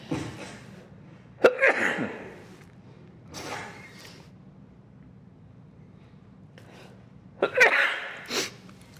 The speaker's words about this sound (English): I'm going to sneeze, excuse me.